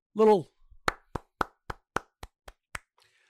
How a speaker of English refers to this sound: Little golf clap for Justice.